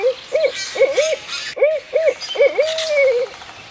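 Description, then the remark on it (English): A barred owl hoots two rhythmic phrases of rising-and-falling notes, clear; the second series ends in a long, drawn-out, descending hoot. “To signal it was okay to slip away and join her, she would hoot like a barred owl.”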